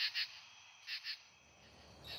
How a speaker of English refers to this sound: Then in September, there are the katydids. A much softer, synchronous, echoing sound.